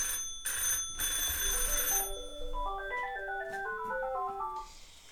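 A telephone rings loudly: a bright, jangling bell for about two seconds, followed by a stepping electronic ringtone melody that repeats its little tune. No one speaks.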